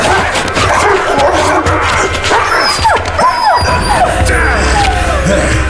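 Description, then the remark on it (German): Two dogs bark and yelp frantically, their sharp cries overlapping with whines and rising squeals over a steady, noisy background, with a brief crash partway through. “Ich muss die beiden Köter ausschalten.”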